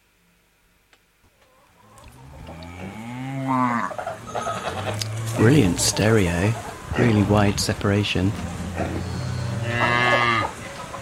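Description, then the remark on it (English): A farm soundscape chosen from a list of sounds: several cows moo in long, loud, drawn-out calls that overlap, with fainter clucking hens underneath, and a person briefly speaks over the farmyard sounds. “Which would you like? Farm.”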